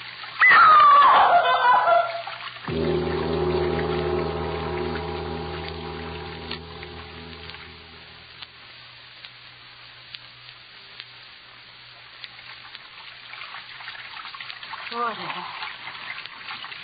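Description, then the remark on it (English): Running water rushes steadily with a broad, hissing wash, loudest at the start, while a low droning hum joins for several seconds before the flow settles into a quieter, continuous trickle. “Running water.”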